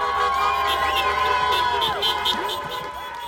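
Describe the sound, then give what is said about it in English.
A dense crowd of Evanston residents cheers and whoops in a loud, continuous roar, with steady car horn blasts sounding through the noise outdoors, minutes after Joe Biden was projected winner of the 2020 presidential election. “Minutes after CNN and the Associated Press projected his win, some Evanston residents began cheering and honking car horns.”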